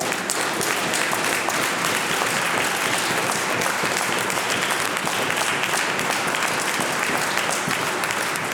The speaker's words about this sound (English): The pre-cabinet shuffle clap.